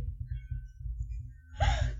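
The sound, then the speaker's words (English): A single sudden, shrill sneeze bursts out near the end, high-pitched and shriek-like, after a stretch of low steady background rumble. “I generally don't shriek out my nose, though. It was a sneeze.”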